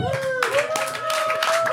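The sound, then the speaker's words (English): Several people clap in uneven bursts of broad, crackling noise while a steady, mid-pitched held tone, like a sustained voice, runs underneath throughout. “You know who you're not clapping for?”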